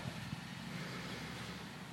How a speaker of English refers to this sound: happen to be sitting in a car, it's raining, and we're in a parking lot.